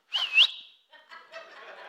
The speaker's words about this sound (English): I have this little thing with my kids. When I get lost, I whistle at them. Not disrespectfully, but it's kind of more like a...